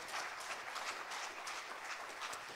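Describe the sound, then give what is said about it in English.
A church audience claps steadily and densely as a hand clap of praise to God, a sustained wash of many hands applauding together at moderate loudness, with no voices standing out above it. “Somebody ought to give him a hand clap of praise right now in the house.”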